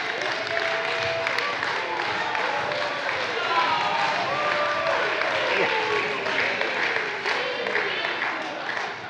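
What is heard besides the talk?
audience clapping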